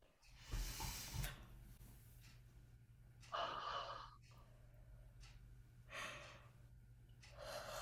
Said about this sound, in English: So we're going to do something fun right now. I want everybody to do it. I want you all just to take a deep breath and yawn.